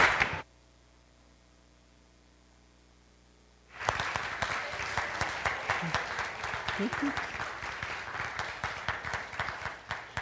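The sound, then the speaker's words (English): A brief noisy burst opens, then near-silence, before an audience applauds the actors of a play, with sustained, dense applause from about four seconds on, many hands clapping steadily and loudly until the end. “Just want to give them one more round of applause.”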